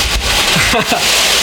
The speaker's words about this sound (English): Oh my god, it's really loud raining right now. I hope it's not too bad. This is crazy loud. It's extremely loud.